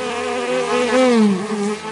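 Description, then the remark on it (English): A steady bee buzz hums throughout, its pitch rising and dipping slightly as if the insect drifts past. No one speaks. “Bees often fly in straight lines between water sources and the hive.”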